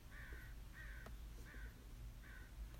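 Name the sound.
crow cawing outside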